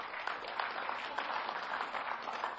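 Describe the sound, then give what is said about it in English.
A church audience claps together after a vote passes for the church to leave the United Methodist Church, a steady, dense wash of applause holding an even, moderately loud level for the whole stretch, with no voices heard over it. “Yeah, you can clap your hands if you want.”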